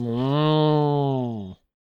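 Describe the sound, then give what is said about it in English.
A single long, loud cow moo, steady for about a second and a half before cutting off sharply into silence. No voices accompany it. “Why is there still a cow mooing?”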